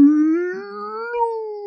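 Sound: voice imitating whale call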